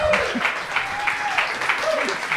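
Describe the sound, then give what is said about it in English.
Steady applause from an audience, a dense wash of many hands clapping at an even level, with brief tonal sounds and faint murmuring beneath it. “Please clap.”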